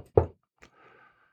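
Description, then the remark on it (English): Two quick knuckle knocks on wood: a solid, hollow first rap followed by a lighter second one, then a faint lingering tone fading out. No one speaks. “And look, there have been no bankruptcies on my watch so far, so let's knock on wood.”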